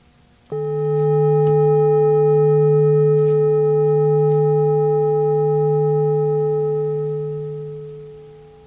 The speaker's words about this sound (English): the sounds of silence. And the bell sounds.